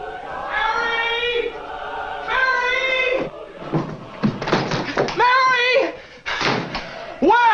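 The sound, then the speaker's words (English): In a film's final scene, George Bailey bursts through the door of his own house searching for his family: the door bangs open with a sharp, heavy thud, followed by more knocks and bumps while excited voices shout loudly. “And in the most powerful culmination of perhaps any movie I have ever seen, George Bailey burst through the door of his own house, searching for his family.”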